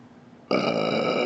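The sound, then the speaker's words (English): A single loud, sustained burp erupts abruptly after a brief quiet moment, with a rough, resonant drone that holds steady until the end. “Excuse me, I've gone this entire episode without burping one really good time in the recording, and that was absolutely fucking wonderful.”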